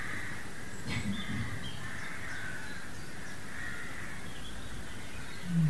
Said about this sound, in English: So if the birds are present in awareness, you can share some of the goodness with them.